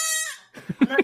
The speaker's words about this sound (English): Why are you doing that to that goat?